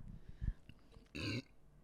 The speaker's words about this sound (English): Go on, burp.